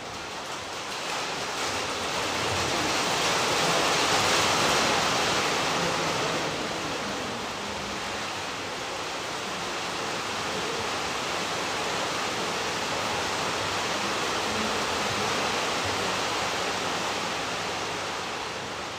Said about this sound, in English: Thank the Lord for rain. Asante Bwana kwa ajili ya mvua.